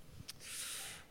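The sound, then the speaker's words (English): A single sneeze from an audience member at a live show: a sharp burst followed by a breathy, hissing exhale lasting under a second. It sounds fairly quiet, with no talking. “Bless you, audience member who sneezed.”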